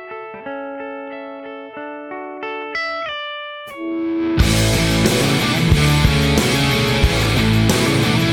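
A rock song plays as outro music with no vocals: clean, sustained guitar-like chords open for about four seconds, then the full band crashes in with loud distorted guitars and pounding drums.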